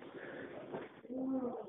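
A cat lets out a short, drawn-out meow, a clear tonal cry lasting about half a second after a moment of low background noise.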